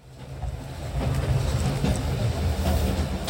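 A train rolls steadily along the tracks, its deep, continuous rumble filling the space, with faint rhythmic clicks of wheels over rail joints coming through now and then.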